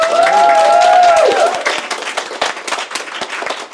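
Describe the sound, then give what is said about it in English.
An audience bursts into loud, dense applause for a panel at an event hosted at the W Hotel, with a high sustained cheer riding over the clapping for the first second or so before the applause thins out slightly. “So first of all, a huge round of applause and thank you to our amazing panel.”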